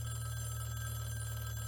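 A telephone rings with a steady, continuous electronic tone, fairly loud and close, with no voices heard over it.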